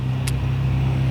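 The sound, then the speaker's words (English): Heavy vehicle rumble with a steady low engine drone, fairly loud, with a brief hiss partway through as a particularly noisy large truck rolls past. “A particularly noisy truck just went past.”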